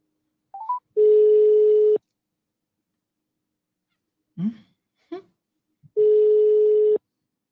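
A phone call is placed: a few quick dialing beeps lead into a steady, buzzing phone tone lasting about a second, then a pause with brief vocal noises before the same tone sounds again.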